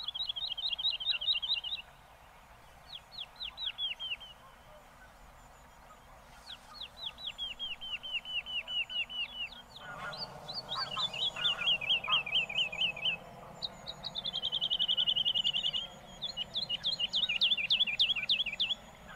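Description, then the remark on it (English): Bright songbird phrases repeat in quick, rhythmic bursts of high chirps and trills, with another bird joining midway over a steady hum of insects in the background. “they all kind of, you know, circle around in their territory, singing at the same time, or do it from a perch”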